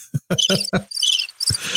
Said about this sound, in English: Ah, the crickets chirping.